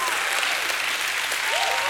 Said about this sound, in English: Can anybody in the house give God another hand clap and a shout of praise?